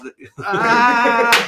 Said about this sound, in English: That'll pick up nicely for listeners. Icelandic football chant. That was a clap, listeners, by the way. Sorry about that. Competitive streak came in then.